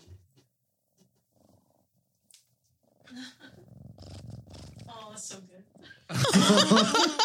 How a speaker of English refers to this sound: That's some straight purr ASMR right there.